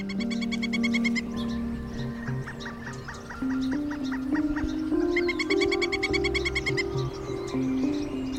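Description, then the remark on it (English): A northern flicker, a woodpecker, gives its trademark rapid, ray-gun-like call in quick bursts, repeated notes rattling out clearly, with other bird sounds and a low background hum beneath. “The trademark ray gun call of a northern flicker.”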